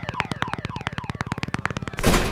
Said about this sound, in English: Oops. I think one of those shopping carts rolled into that car.